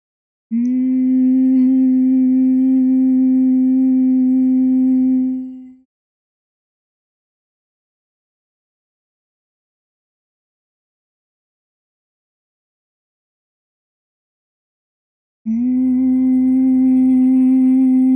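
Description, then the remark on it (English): A loud, steady nasal hum from a person doing humming bee breath, a breathing exercise, on one low pitch holds for about five seconds, fades out, and after roughly ten seconds of silence a second identical hum begins. “You can continue with your humming bee breath as long as feels comfortable for you to relax the mind and calm the body even more.”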